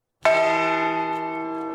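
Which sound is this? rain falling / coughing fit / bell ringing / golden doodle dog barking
bell ringing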